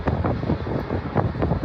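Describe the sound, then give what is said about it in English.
Heavy wind buffets a microphone outside an airport control tower cab while a new Iraqi Airways 737 MAX is filmed coming in. It is a loud, constant low rumble with irregular gusty thumps and bursts, no voices, just the roar of gusting air against the mic. “A little windy up there, I guess.”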